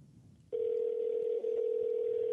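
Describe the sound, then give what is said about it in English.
A phone line tone starts after a brief quiet moment and holds as one steady, fairly loud electronic ring, heard through the receiver while waiting for someone to pick up. “He better answer the goddamn phone, this master son of a bitch.”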